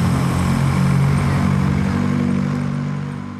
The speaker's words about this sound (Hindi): घर के बाहर खड़ी मारुति 800 की डिगी में सामान रखने के बाद वो शख्स गाड़ी तेज रफ्तार से भगाते हुए अंधेरे में गुम हो जाता है।